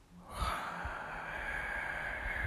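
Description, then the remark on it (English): A slow, steady exhale of breath, airy, starting abruptly and holding an even hiss for a couple of seconds with no talking: the three-second out-breath of a breathing exercise done with eyes closed, breathing in for 3 seconds, holding for 2, and out for 3. “So we breathe in for 3, 1, 2, 3, hold for 2, 1, 2, and out for 3.”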